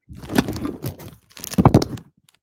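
Trading cards are shuffled on a desk in two quick bursts of crisp, papery riffling and flicking, fairly loud, with a short pause between them and no talking.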